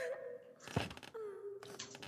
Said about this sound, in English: Yes, there's a momentary pause in the crying, and then it just continues on.